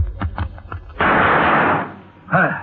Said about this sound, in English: That was nice shooting, Cisco. You beat me to those chips.